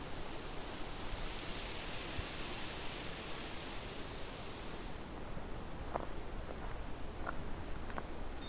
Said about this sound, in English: So as you can hear, I got several of these black-throated green warblers. And they're still singing even though it's about a half hour before sunset. This species can be very vocal.